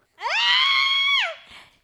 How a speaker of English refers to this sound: Why am I screaming?